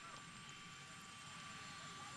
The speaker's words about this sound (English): Mr. President, we can't hear you. There's a helicopter running over there, dummy.